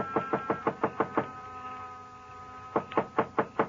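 Knocking on the wooden door of a small, dark frame building on a side street near a park, fairly loud: a quick run of about seven raps, a pause of over a second, then another burst of five. No voices.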